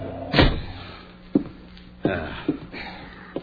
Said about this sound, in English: Kick the door shut.